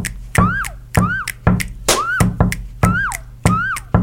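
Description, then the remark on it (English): A whistled swooping note, rising then sliding down, repeats six times in a steady pattern, imitating a quirky sound effect that lands just off a punchy drum beat. “So I'm going to add that to my little goofy version of this just by whistling.”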